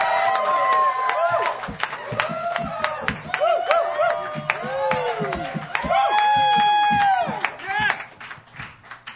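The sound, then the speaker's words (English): A packed crowd at the Hideaway claps and cheers at the start of the YEG Live Songwriter Stage on February 21st, 2010, with sharp, scattered handclaps under rising and falling whoops and shouts that stay loud throughout before easing off near the end. “You think there's a crowd on Robson Street? You ought to be here.”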